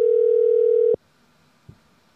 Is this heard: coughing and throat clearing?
no